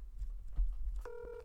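Telephone dialing tones sound as a brief, steady electronic beep of layered pitches near the end, following about a second of low rumble and faint handling noise.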